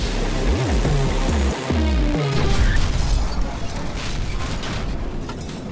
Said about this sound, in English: He jerks back and there is this huge splatter as part of his head just explodes and his whole body slumps.